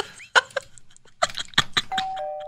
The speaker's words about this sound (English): Wind chimes need to be illegal. Oh, God. The whole neighborhood is kept awake and annoyed all the time because of one occupant wants to just share their love for the sound of clanging metal pipes.